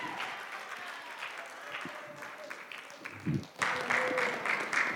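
A church audience gives a clap offering to the Lord Jesus as a pastor is invited to the podium: dense, steady clapping from many hands, continuous and swelling louder toward the end, with faint voices mixed into the crowd noise.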